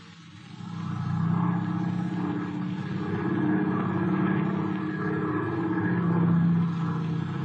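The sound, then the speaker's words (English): A propeller airplane engine drones steadily and loudly after a brief swell at the start, its low throbbing hum holding constant with a faint rise and fall in pitch. “Where's Mr. Slattery going in the plane?”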